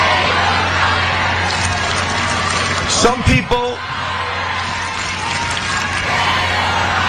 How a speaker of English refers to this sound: And so, as the CEO was speaking at Boston University, the students started booing and chanting. Here is that chant.